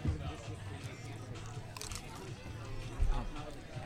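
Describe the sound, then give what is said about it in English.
Chewing into a microphone with crunchy, wet bites and mouth noises, continuing steadily for a few seconds over a low hum, with a voice faintly present in the background. “Gotta remember, don't chew into the microphone.”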